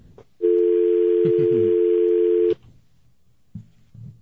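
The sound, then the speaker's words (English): A loud, steady telephone dial tone after a hang-up drones for about two seconds, then cuts off abruptly, leaving faint background noise and a couple of soft clicks. “Maybe you can hear it from the dial tone. Maybe the dial tone will give you encouragement.”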